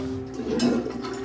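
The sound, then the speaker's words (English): A toilet flushing mushrooms away: a brief rush of swirling water that swells and fades over a steady low hum, with no one talking. “We flushed those fucking mushrooms down the toilet.”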